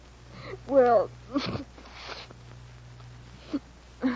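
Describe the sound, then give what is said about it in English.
A nose is blown with a loud, honking nasal burst, followed by a few shorter snuffling blows and sniffs, over a low steady hum. “Blow your nose and tell me why a writing fella like Will Calder suddenly comes down with writer's cramp and can't send you even a postcard.”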